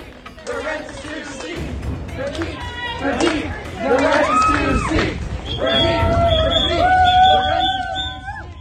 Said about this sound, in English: These students remain on stage for nearly 15 minutes before continuing to chant, clap, and blow whistles from just outside the event.